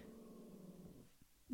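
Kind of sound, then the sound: animal, pet growling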